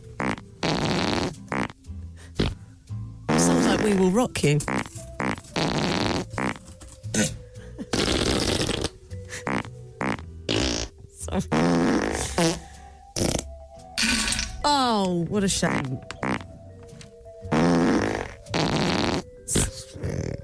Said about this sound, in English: Technically, that was happy birthday in farts.